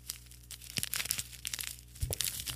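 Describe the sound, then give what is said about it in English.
Continuous crinkling and crackling of a stiff paper bag of sugar being handled and squeezed, with irregular sharp rustles throughout and no voices. “That sounds like paper app. Crackling. It is. It's a bag of sugar.”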